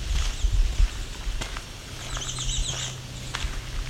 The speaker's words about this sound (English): Must be two, it sounds like that. So that's three Swainson's thrush.